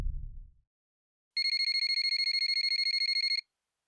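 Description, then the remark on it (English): A brief low rumble, then a phone ringtone rings unanswered for about two seconds and goes to voicemail: a bright, rapidly pulsing electronic trill, clear, with no voices. “I wake up again to my phone ringing and once again I let it go to voicemail.”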